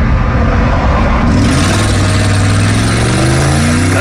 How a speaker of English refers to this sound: The 23-year-old takes off, seen weaving through cars on the interstate in his Dodge Charger, passing by them like they're at a standstill.